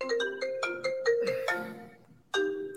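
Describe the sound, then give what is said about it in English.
A melodic phone ringtone from an incoming call plays on its own, a quick run of bright electronic notes that rises, pauses briefly, then starts again loud. “It cut off because I was playing it on my phone and now I'm getting a call.”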